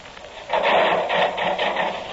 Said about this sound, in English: Yeah, start the saw going.